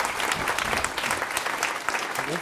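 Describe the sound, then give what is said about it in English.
An audience claps steadily, a dense, even patter of many hands sustained at a fairly constant level throughout, with no voices standing out. “Thank you very much, guys. A round of applause.”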